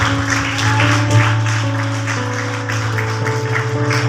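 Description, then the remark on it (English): An audience claps in a steady, rhythmic beat over a sustained, droning organ chord, the crowd's applause spreading across the whole stretch without any talking. “Somebody clap for that Jesus.”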